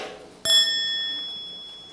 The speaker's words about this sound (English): You make a half sound in order to wake up the bell. This is the half sound.